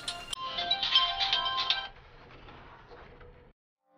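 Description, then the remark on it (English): A phone rings loudly with an incoming call, a bright, warbling electronic tone for about two seconds, then quieter murmuring continues before cutting to silence. “I like getting fucking phone calls in the middle of a podcast.”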